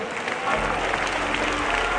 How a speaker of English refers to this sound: Come on, let's continue to clap our hands and give God the praise.